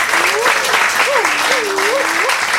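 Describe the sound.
A crowd applauds steadily for the whole moment, dense loud clapping with a voice rising and falling over the noise.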